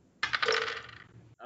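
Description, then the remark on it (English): Two dice clatter and tumble across a hard surface, fairly loud, rattling for about a second before settling; a voice starts speaking right after. “I'll say you get two dice.”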